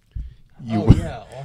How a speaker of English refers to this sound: Are you okay? Are you choking?